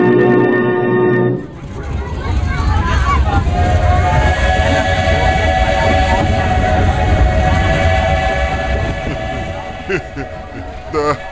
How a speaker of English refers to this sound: hijacked the train and sent it off on a secret track they had built. Hurtling through the woods